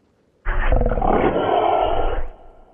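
A troll's bark in a dark cave at night: a single loud, deep, rasping roar bursts out after a brief silence, holds for nearly two seconds, then drops off into a fading growl. No one speaks.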